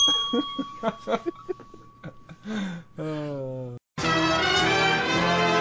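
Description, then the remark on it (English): Speech for a few seconds, then a bright, sustained ringing bell, used as a segment jingle, bursts in loudly after a brief pause and rings on to the end. “And I think that's the waffle bell.”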